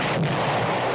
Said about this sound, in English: Kaboom! What an explosion.